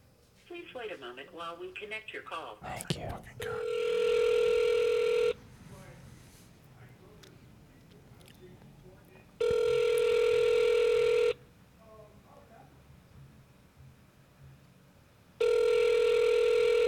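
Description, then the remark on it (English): A burst of telephone keypad dialing tones on a call to the Houston Improv and Restaurant, then a steady ringback tone that repeats three times with long pauses, fairly loud, with quiet background murmur between rings. “Why does nobody answer the phone anymore?”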